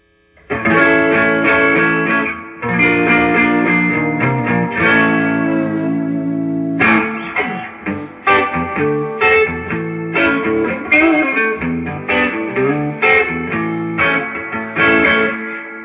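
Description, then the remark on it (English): A distorted electric guitar played through a Deluxe Reverb amp, gain all the way up on the blackface mode, plays sustained chords, then choppier strummed passages, loud with a wash of reverb and a slightly buzzy edge. No one speaks. “That's gain all the way up on that blackface mode. Let's hear what the with the deluxe reverb.”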